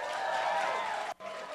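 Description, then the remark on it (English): The single members of an audience clap and cheer in a dense, steady burst of applause that breaks off for a split second near the end, then picks right back up. “Who is single? Round of applause.”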